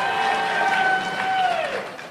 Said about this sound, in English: Yeah! People are cheering.